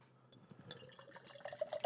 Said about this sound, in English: I pour this into my glass, look at this color.